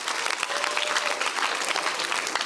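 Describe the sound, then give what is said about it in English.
A large crowd claps steadily and continuously, a dense wash of many hands applauding together in praise of the Lord that fills the space for a few seconds without a break. “Give the Lord a clap of it.”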